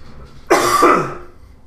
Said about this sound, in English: But the air kicked in and it's causing me to cough.